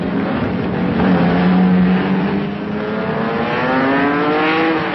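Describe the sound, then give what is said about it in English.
A racing car engine roars loudly, revving and climbing in pitch as it accelerates, with a steady continuous drone and no voices. “Have the thrill of driving a racing car yourself at Britain's most famous racing circuit, Brands Hatch.”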